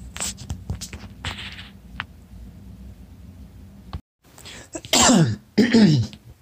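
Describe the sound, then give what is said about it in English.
Two loud coughs in quick succession near the end, each with a harsh voiced tail, following a stretch of low background rumble, scattered clicks and a brief moment of silence. “So, I'm fucking coughing so you don't notice the cut.”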